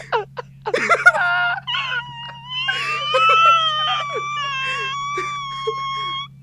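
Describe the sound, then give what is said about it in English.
A voice imitates a dying dolphin: a few short squeaky bursts, then long, high, wavering whistle-like wails that rise and fall, moderately loud and sustained to the end. “You have now heard the sound of a dying dolphin.”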